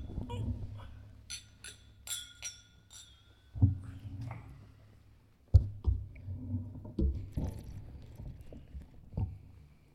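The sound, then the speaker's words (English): Glasses of whiskey clink together in a toast several times in quick succession, leaving bright ringing tones, followed by quieter thumps and handling noises as the drinks are lifted for a first sip and set down. “All right, well, gentlemen, cheers. I'm gonna go ahead and get that first sip in.”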